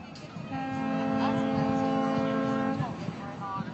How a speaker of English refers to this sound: And this next sound is from a dear family friend, Mark Holstein, who sent the sound of boat horns.